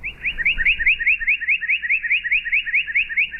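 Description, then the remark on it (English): A pine warbler's song played slowed down to almost half speed: a steady, even series of rising, slurred whistled notes, about six per second, loud and clear with no voices or other sounds. “Here's the pine warbler, regular speed, and then slowed down.”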